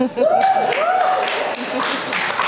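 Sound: applause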